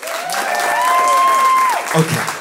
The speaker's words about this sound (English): Before I tell this story, round of applause if your parents are divorced.